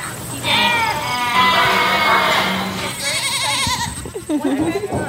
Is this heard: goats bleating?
yes